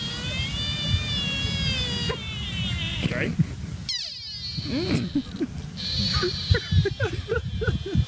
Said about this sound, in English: Now, this is in rut, which is like before sweet love. This is kind of like a, I don't know, like a horny call. All right, deer in rut.